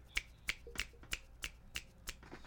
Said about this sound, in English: I was politely applauding with a little jazz snap of the fingers. It sounded like you were just crunching down on some chips